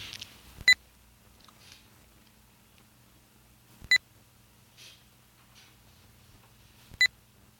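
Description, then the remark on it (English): Three short, high electronic progress tones from a device connecting to the internet through a Rogers wireless modem, each a brief bright beep, repeating about every three seconds against an otherwise quiet background with a faint low hum. “We get please wait, and the progress tones...”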